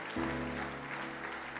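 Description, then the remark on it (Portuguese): A church audience applauds the Lord during a sermon, a broad steady wash of clapping over a low sustained hum, continuous and moderately loud for the whole moment without a clear break. “Pode aplaudir o Senhor, você que ameaçou aí?”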